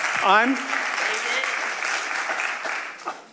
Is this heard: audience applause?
yes